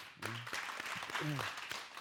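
An audience applauds steadily, a dense wash of many hands clapping at once, with a couple of short voiced cheers or calls rising briefly above the clatter.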